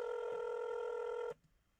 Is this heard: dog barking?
no